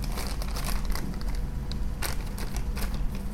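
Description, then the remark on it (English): A plastic bag from product packaging crinkles and rustles continuously for a few seconds during an unboxing, with bright, crackly bursts of sharper crinkles and a low rumble underneath; no one speaks. “And they give you plastic bags that are easy to get into.”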